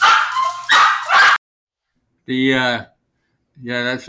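A dog barks in separate bursts: a quick cluster of rough, noisy barks first, then two longer, tonal yelping barks after short pauses, fairly loud.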